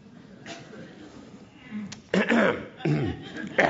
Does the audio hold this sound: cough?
yes